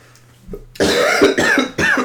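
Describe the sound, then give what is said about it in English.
A burst of three harsh, loud coughs in quick succession, with no talking around them. “Thank you for coughing.”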